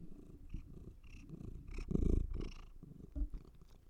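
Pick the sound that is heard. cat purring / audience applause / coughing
cat purring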